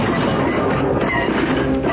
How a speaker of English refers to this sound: Did you seriously just crash through one, two, three, basically all the floors of the LBC HQ? Yeah, I did. That is one big hole.